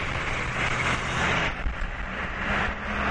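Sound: city street traffic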